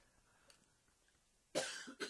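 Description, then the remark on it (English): A single harsh cough bursts out after a near-silent stretch, followed by a shorter second cough, both fairly loud, with no talking. “Little bit of a cough button. Sorry”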